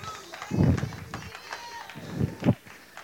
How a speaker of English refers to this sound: Give God a hand clap. Praise.